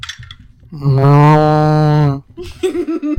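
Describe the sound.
A voice imitates a mushroom cow's moo: one long, loud, steady lowing call lasting over a second, followed by faint background chatter.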